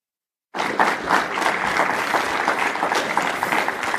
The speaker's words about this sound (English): Round of applause. Amen.